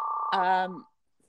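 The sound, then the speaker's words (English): A house phone rings with a short, steady electronic tone, loud, then a voice cuts in over it before everything drops to near silence. “You have your house phone ringing in the background.”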